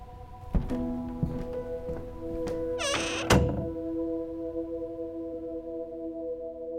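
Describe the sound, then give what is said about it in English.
A door is pushed shut: a brief creaking squeal ends in one solid thunk, after a couple of softer knocks, all over a steady low humming drone. “Close the door on your way out.”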